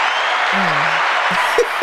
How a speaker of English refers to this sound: Put the hand claps on for you. Yay, Yoshi Man. Hand clap for the engineer.